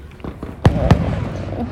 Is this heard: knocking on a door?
no